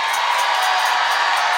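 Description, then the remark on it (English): An audience jumps up and screams and cheers together in a steady, dense roar of many voices, loud and unbroken for under two seconds, with no single voice standing out. “And if you've chosen to live, jump up and scream in this place.”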